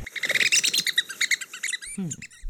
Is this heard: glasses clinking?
no